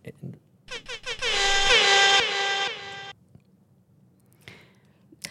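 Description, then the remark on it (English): Three short air horn blasts burst out, followed by one long, loud sustained blare, then it cuts off abruptly, leaving a brief quiet with faint background noise. “Give her an air horn.”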